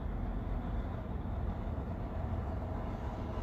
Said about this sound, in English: Oh, my God, there's another truck coming.